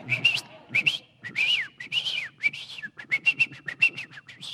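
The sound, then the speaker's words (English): A person whistles a rapid, warbling birdlike tune to a covered, caged canary to teach it to sing, in quick bursts and trills imitating a canary's song, high-pitched and lively, with no talking. “And as I whistle to the canary, I teach it to sing.”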